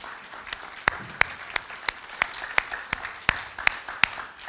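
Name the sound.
audience applause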